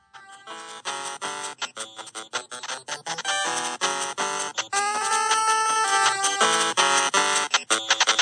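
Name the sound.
video game soundtrack music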